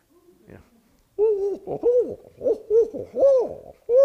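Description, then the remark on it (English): A person imitates a barred owl call with a rhythmic series of loud hooting syllables rising and falling in pitch, preceded by a brief quiet murmur. “Who can do an owl call? Who can do a barred owl?”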